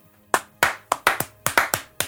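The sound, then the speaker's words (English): A single person claps their hands about eight times in an uneven rhythm, each clap a sharp, bright crack with a short ringing tail, and nobody talks. “You are clapping it up.”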